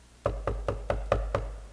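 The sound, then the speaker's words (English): Six firm knocks on a door, evenly paced in a steady rhythm, fairly loud, with no voices around them. “The Lord's knocking. And he'll continue to knock.”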